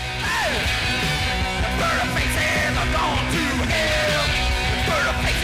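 A loud, dense blast of raw punk rock: distorted guitars and pounding drums fill the mix while a voice yells and howls over the top, unrelenting from start to finish.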